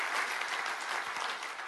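An audience applauds church ministry leaders such as kids pastors and youth pastors, a dense wash of many hands clapping at an even, sustained loudness with no voices standing out.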